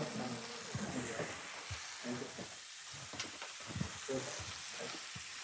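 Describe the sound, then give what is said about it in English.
Herbs sizzle and crackle in hot oil in a stainless steel pan, a steady frying hiss with scattered pops and occasional stirring scrapes, while a faint low voice murmurs underneath. “Yeah, some of the polyphenols in the herbs, rosemary, thyme, oregano in particular, they help to protect the oil. So you get that nice caramelization, but the oil's better.”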